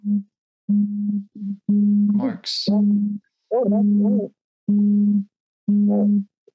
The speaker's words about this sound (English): Is your phone vibrating or? That was an emergency. Oh. Yeah. It was for the whole province and it doesn't impact me right now. Okay. Could you hear that? I think I could hear the vibrating sound.